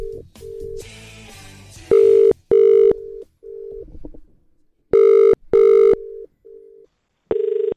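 An outgoing phone call to a contest winner connects: a quick run of dialing tones, then a steady pattern of loud, clear ringback beeps repeating in short pairs, with no voices.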